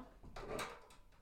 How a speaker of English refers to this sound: Open the door and close Maddie's door, please.